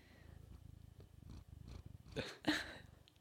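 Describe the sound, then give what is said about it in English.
A cat named Pi purrs in a steady low rumble, then gives two short, breathy sniffs at the microphone in quick succession toward the end. No one speaks. “Oh, he's having a little sniff.”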